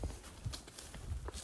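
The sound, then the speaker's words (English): A horse's hooves clip-clop at an unhurried walking pace, a steady run of hollow knocks roughly every half second, fairly soft, with no one talking. “And then I moved to this remote valley, and a woman gave me my horse, Pistol, got her for free, which is sort of like a free puppy, not a free beer.”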